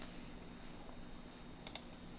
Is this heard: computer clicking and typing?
yes